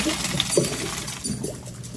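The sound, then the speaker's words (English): Water gushes and splashes steadily for a couple of seconds as cooked macaroni is poured into a strainer, with a few light metallic clinks mixed into the continuous rush. “Next, we're going to strain the macaroni, then put it back into the pot.”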